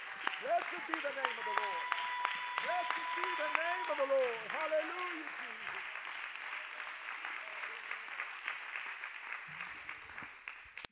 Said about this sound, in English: One more time, can we just give the Lord Jesus another hand clap of praise? He's a good, good God, and he deserves all the glory.